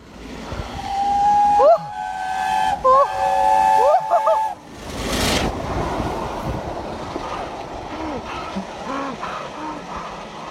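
A steam train whistle sounds loud in a few long, sustained blasts, followed by a sharp burst of hissing steam and then a murmuring crowd with faint voices.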